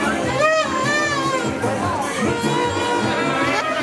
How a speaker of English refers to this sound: But if we can, you know, make ourselves heard above the din of the parties that are going on here in the bar.